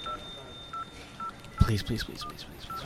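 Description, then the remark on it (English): A series of short electronic telephone keypad beeps, evenly spaced as a phone number is dialed, with a steady faint tone underneath; partway through, a person starts talking over the beeps, and the call then rings through to the Massacre Radio voicemail, a radio station. “Oh, it's ringing.”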